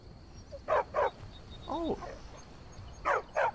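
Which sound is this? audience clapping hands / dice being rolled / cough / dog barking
dog barking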